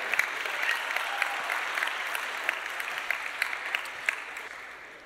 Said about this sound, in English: Show the clip. You can clap for that.